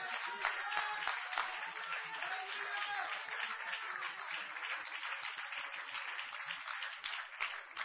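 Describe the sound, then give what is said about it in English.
An audience clapping their hands together in praise of the Lord, a dense, continuous patter of many overlapping claps that holds a steady level for the whole stretch, with no voices standing out. “Clap your hands and praise the Lord right now.”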